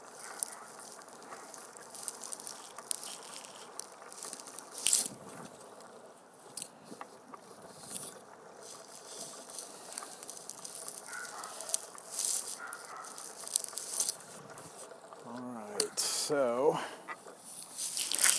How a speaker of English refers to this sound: Grab that scarf. I promise this is not Foley. This is me actually coming in to get the scarf out of my bag.